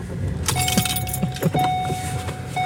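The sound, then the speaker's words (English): Keys worn around a woman's neck jangle in a run of bright metallic clinks and rattles, with a steady high tone and a low engine-like rumble underneath. No one speaks. “Oh, she's got keys around her neck, rings on her fingers, and bells on her toes.”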